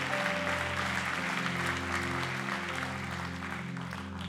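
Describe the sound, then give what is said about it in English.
An audience in a family worship room claps their hands for everybody raising a hand, in steady, continuous applause, dense and fairly loud, over a sustained low organ or keyboard chord that holds throughout. “Come on, let's clap our hands for everybody who's raising a hand, because every hand represents a soul today.”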